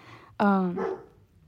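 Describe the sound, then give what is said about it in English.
A dog outside, right outside a window, lets out one sharp, drawn-out bark with a tonal, slightly whining quality. It cuts in suddenly over a quiet background and fades within about half a second. “A disclaimer, if there's barking in the audio, I'm so sorry. I don't know what they're barking at outside, but something's threatening us, I guess.”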